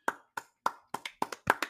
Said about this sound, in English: if you don't start clapping. I'm clapping. Okay, you can, I can hear it.